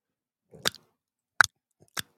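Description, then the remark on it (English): Sharp, dry clicks of a tobacco pipe, three distinct taps spaced irregularly with a fainter tick between the last two, heard alone against silence. “It's clicking of the pipe.”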